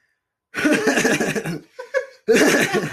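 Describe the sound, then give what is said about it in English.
A big, harsh cough that breaks into loud, pulsing laughter, dips into a brief strained wheeze, then bursts back into hearty laughing. “Big cough. It was a cough into a laugh.”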